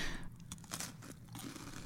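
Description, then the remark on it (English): Someone bites into a crisp Trader Joe's rolled wafer with a little pumpkin spice cream filling: a few sharp brittle cracks followed by steady chewing crunches, with no talking. “Light and crunchy mm-hmm. with a little cream filling.”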